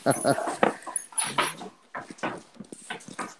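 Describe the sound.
A dog whimpers in a run of short, high, whiny bursts, with muffled voices murmuring underneath.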